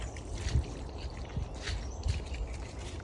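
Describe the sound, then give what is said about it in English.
Water trickles and splashes steadily outdoors where a dog is being walked, a soft continuous pouring sound with a few louder sloshes, with no one speaking. “You're going to have to go through the water, sweetie.”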